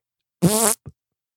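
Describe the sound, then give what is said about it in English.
A single buzzy raspberry blown with the lips, loud, lasting about a third of a second, followed by a short softer sputter. “You got to do the mouth fart, buddy.”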